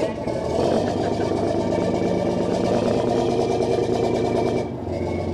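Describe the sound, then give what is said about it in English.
The engine of the fishing vessel Sea Hound idles as she docks at the Chatham Fish Pier on Cape Cod, Massachusetts, to unload her catch, with a steady, throbbing low rumble and rapid rhythmic chugging, holding an even loudness before a brief dip near the end, then carrying on. “The fishing vessel Sea Hound docks at the Chatham Fish Pier on Cape Cod, Massachusetts, to unload her catch as a huge steel bucket swings down onto her deck.”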